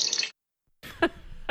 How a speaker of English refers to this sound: the water!